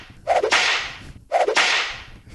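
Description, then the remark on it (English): Two loud, sharp whip cracks about a second apart from a whip swung overhead, each a sudden snap trailing into a brief hissing swish, with no voices present. “Who puts a commercial in front of a whipping sound?”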